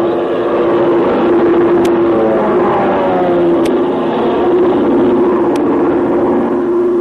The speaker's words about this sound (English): You can't make out what kind of a plane it's it is. It's an army plane.